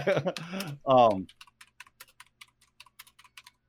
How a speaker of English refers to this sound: And I hear you typing. I'm gonna look this shit up too, because I don't trust you.